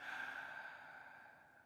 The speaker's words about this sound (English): And the best way to stay present? Breathing. Take a nice inhale in.